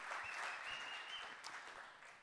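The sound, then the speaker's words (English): A group gives a morning round of applause to honor someone, dense steady clapping that holds fairly loud throughout and eases off only slightly toward the end. “So just give him a lekker round of applause.”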